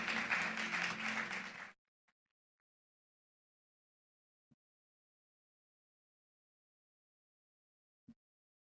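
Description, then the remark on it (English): A church audience bursts into dense, loud clapping unto the Lord for under two seconds, then it cuts off into silence broken only by a couple of faint, isolated taps. “Let's clap unto the Lord.”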